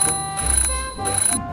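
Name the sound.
alarm clock ringing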